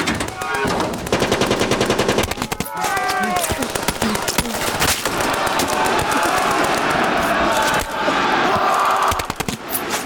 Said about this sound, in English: We dropped the ramp, and then all hell broke loose. The soldiers in the boat received a hail of machine gun bullets.